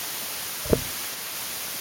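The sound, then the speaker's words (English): A steady hiss of static interference from a caller's microphone fills the line from start to finish, broken once by a short crackling pop partway through. Nobody speaks. “Yes, although I suddenly have some interference from you at the moment.”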